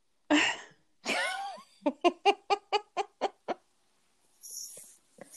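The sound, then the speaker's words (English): Chickens cluck at a house: two drawn-out squawks, then a quick, steady run of about eight sharp clucks, followed by a soft hiss. No one speaks. “Make sad face at my husband and ended up with accidental chickens at my house.”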